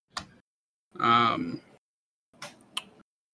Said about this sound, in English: Who's typing? I'm done. No, I mean, you're typing something important.